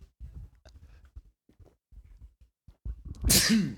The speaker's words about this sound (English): Bless you. Yeah, I had no idea what you were doing with your face you. Before that. Oh, God. I thought you were like, I just can't understand it. No, that's the first time I've seen you sneeze.